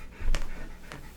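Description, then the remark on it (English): A dog pants, with two quick breathy huffs standing out over a low, rumbling background and no talking. “We're going to take the pup with us.”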